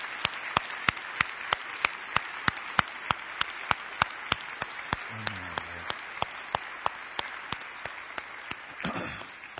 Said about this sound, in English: I want to do one last thing to commemorate Memorial Day. If you have served in the armed forces ever, would you please stand so that we can recognize you and give you a round of applause? Just take a moment to stand. We honor you.